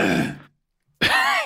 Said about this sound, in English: What a wonderful cough you have. That sounded nice, right?